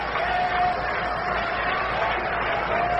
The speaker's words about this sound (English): The fans begin to clap it up.